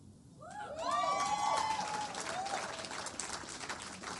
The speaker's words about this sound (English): Yeah, you can clap, you can give the Lord a clap offering for that.